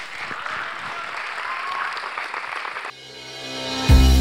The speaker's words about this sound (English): Church, give the Lord one hand clap of praise and let's get out of here. Come on.